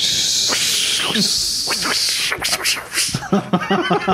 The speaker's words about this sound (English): Love the sound effects. No, I mean, are those the sound effects for Odie's supercharger?